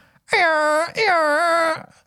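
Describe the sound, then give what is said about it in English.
A voice imitates an air horn with the mouth: two loud, sustained blasts, each under a second long and separated by a brief pause, with a buzzy, nasal, harmonic-rich tone. “have a go at doing one of those air horns. Just with my mouth?”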